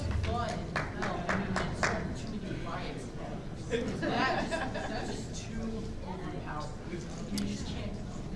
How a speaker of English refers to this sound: I like that you applauded.